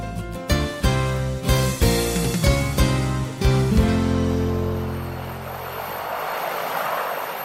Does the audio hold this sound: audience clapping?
no